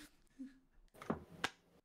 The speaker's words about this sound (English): Why was there one clap?